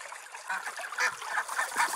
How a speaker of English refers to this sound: And it is literally a stationary camera on a pond where there's like 20 ducks all the time. Oh. There's just ducks all the time. It's amazing. My heart. Like, yeah. I don't know if you could hear these ducks.